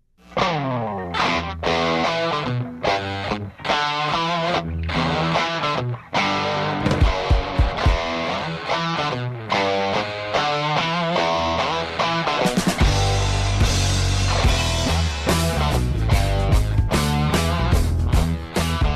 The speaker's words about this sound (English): The cat you hear playing guitar right now, he's a little gentleman by the name of, he's not little, I mean, he's a gentleman by the name of,